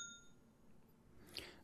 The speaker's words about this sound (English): This is a 20-year-old movie, but here at the front, I want to hit the bell. If you've not seen The Matrix from 1989, we're going to spoil it. So here's the bell.